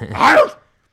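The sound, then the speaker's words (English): A single loud dog bark, abrupt, lasting about half a second before cutting off into silence. “My dogs are like, what are you doing, dude?”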